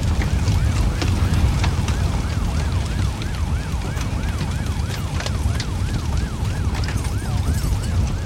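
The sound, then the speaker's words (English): A fast, yelping siren of fire engines and police at a factory fire warbles steadily throughout, rising and falling in quick regular cycles over a heavy, constant low rumble of engine and street noise. “So in a rush to the factory, which is about 25 kilometers away, and there's this eerie feeling, you know, as you're approaching, there's a smoke and there's a fire engines and there's a police.”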